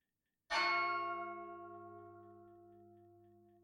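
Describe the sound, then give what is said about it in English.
A single clock bell strikes at midnight, a rich metallic tone with many ringing overtones that hums on and slowly fades over several seconds. No voices accompany it. “No sooner had the clock ceased striking, however, than they rushed, or rather rolled in, all together.”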